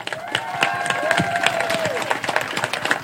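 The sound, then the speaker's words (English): A crowd applauds the helpers at the 33rd annual Superman Celebration in Metropolis, Illinois, dense overlapping claps filling the whole stretch at a fairly loud, even level, with a few cheers and a sustained whistle-like tone rising above the clapping. “And let's give a round of applause for all our helpers right here.”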